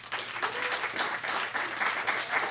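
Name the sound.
audience round of applause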